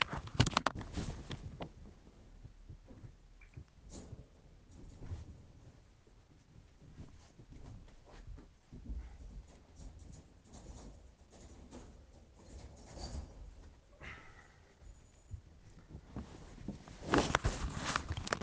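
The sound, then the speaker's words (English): Soft, irregular shuffling and pattering of a dog's paws moving around a room, with occasional light bumps and a louder rustle near the end; no one speaks. “Because trying to do anything with a dog in a room is a very bad idea.”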